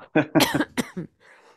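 A short fit of harsh coughing up close, several quick bursts in a row that trail off into a faint breath, with no talking.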